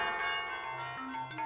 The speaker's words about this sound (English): And number 15 was tubular bells.